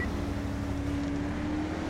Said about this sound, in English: This charger has got a V12 engine in it, and I made sure of that. And this thing on the highway, if you hit the gas hard, can go in excess of over 145 miles an hour as a charger.